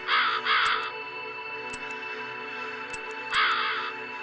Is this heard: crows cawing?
yes